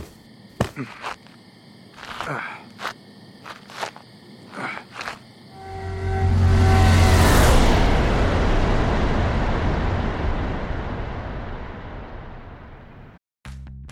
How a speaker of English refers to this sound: He wouldn't be calling them either, because the car that just pulled away from his house was an unmarked police vehicle.